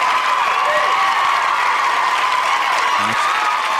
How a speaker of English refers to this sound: crowd noise.